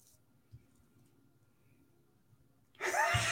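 Near silence with a faint low thump early on, then a single harsh, breathy cough bursts out loudly at the very end.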